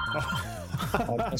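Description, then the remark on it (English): A telephone rings with an incoming call, a steady, trilling electronic tone through the whole moment, partly covered by people talking. “That's just one of our many other listeners trying to call in right now. We got a call on the line.”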